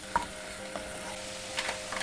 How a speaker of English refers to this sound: We've got the croutons fried off, and now in a separate pan we've got a bit more bacon, the rest of the pack, and just frying it now.